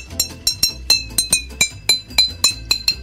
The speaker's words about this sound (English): And suddenly I was like, oh great, I've got a really unusual kind of percussive instrument that I can pitch by changing the water bottle. So I just recorded that and played it along.